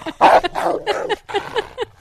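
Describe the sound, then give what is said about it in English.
A female dog barks in a rapid series of short, raspy, almost hoarse yaps, about eight bursts in two seconds, with no one talking, as a microphone is held up to her. “She has a funny bark, though.”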